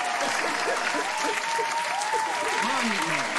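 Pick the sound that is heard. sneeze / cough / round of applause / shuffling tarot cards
round of applause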